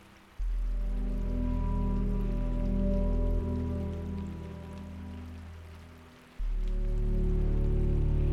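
Steady rain falls in a forest, pattering evenly throughout, a soft continuous hiss beneath low, sustained droning tones that swell, dip midway, and return. No one speaks.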